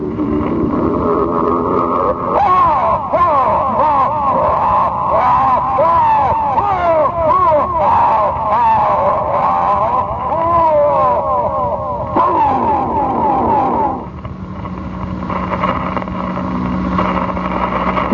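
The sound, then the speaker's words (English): A pack of racing cars, having made the first circuit of the track, roars past, their engines whining and rising and falling in pitch as they overlap in a loud, continuous rush before the noise drops off to a lower rumble. “you can hear the entire group of cars now. They've made the first circuit, and they're approaching the Bandini, which is standing in the middle of the track.”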